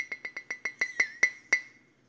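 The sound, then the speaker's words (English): A tea glass is clinked about nine times in quick succession, each bright tap leaving a sustained ringing tone, the strikes gradually slowing toward the end, with no voices present. “Felt like the tea glass clink was more appropriate here.”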